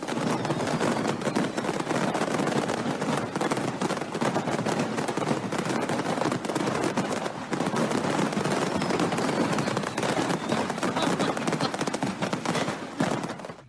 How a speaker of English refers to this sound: So over in Russia, a fireworks store caught on fire. And what do you think happens? Everyone's safe. But this is what it sounds like when a fireworks store catches on fire.